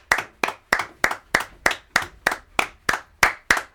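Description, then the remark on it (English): People clap their hands at 8 o'clock in a steady, even rhythm, about eleven sharp, crisp claps evenly spaced over a few seconds, with no talking underneath. “That's us clapping for the... yo, fam.”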